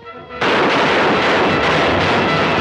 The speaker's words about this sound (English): Bang. What do they do? They shoot him immediately.